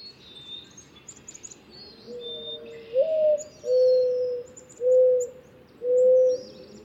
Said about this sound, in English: Now for the sounds that these birds make. The cooing of the mourning dove is super distinctive. Pretty much everybody knows it.